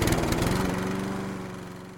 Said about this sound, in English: But come here. I'm gonna teach you how to start a lawnmower.